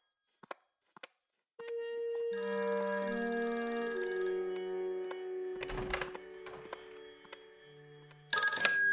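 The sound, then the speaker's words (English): After a couple of soft clicks, a telephone bell at Harridge House rings in one long, continuous metallic trill for several seconds as the phones come back on, broken by brief rattling noises, with a louder clatter at the very end. “The phones are back. I'll get it.”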